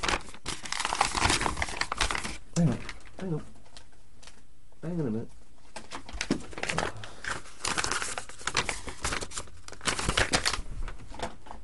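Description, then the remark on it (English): Busy rustling and crinkling of paper as sheets are flipped and shuffled through a Japanese folder in a search for a written-on bit of paper, with brief murmured speech around the two- and five-second marks. “It's in my Japanese folder.”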